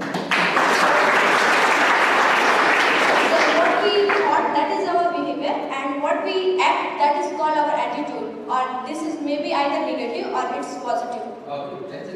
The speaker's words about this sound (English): Yes, ma'am. Give her an applause.